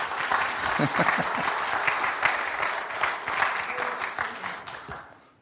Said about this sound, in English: Why don't you give her applause? Come on, do it.